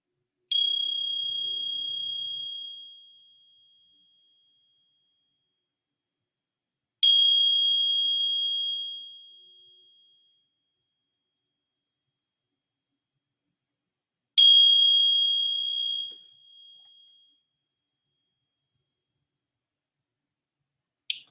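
A clear meditation bell is struck three times at slow, even intervals, each bright ring sustaining and fading out over a few seconds before the next. No talking.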